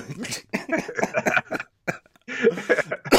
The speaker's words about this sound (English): Stop making me cough.